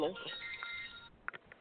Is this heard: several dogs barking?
no